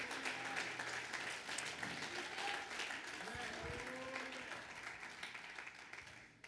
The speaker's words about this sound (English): Somebody clap your hands and magnify the name of Jesus.